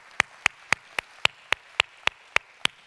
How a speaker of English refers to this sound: Let's give God a hand clap of praise right now. Amen.